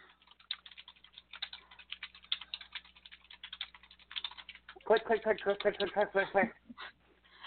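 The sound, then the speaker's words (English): Rapid, uneven clicking of a woman's fingers typing on a computer keyboard, fairly quiet, continuing for several seconds before a voice briefly speaks over it near the end. “at least her typing is not as bad as a Gila woodpecker staking out his territory on a metal chimney.”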